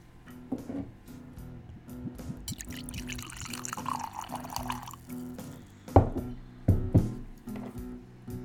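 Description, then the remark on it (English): Woodinville whiskey pours into a glass in a steady stream for a few seconds, its pitch shifting as the glass fills, followed by a couple of sharp glassy knocks. “Can't pour too much. It's only Friday afternoon.”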